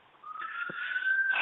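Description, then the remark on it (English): A siren wails on a steady, high tone that creeps slightly upward in pitch and swells louder over about a second, with no one talking. “There's the siren. That's not at my house.”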